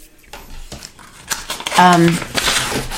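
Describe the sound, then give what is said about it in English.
Paper rustles and crinkles in a few quick noisy swishes as a page is turned, with a brief voiced sound partway through. “Let's turn the page again.”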